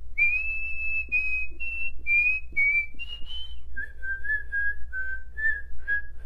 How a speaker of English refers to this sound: Not as good, but that is my useless talent, that I can whistle in and out. And when I'm not really put on the spot, I can definitely do it better.